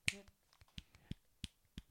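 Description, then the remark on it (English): Roughly seven sharp, dry slaps of a hand against a palm, each a brief smack, coming at an uneven pace with short quiet gaps between them; no one speaks. “Just hit your palm and listen. It's the force to hit the palm with it.”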